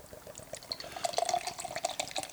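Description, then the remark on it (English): Beer pours steadily into a glass, a continuous liquid gurgle with a bright, fizzy splashing texture that grows a little stronger toward the end. No one speaks. “Going to get a little bit of a pour get here. Get a nice pour going.”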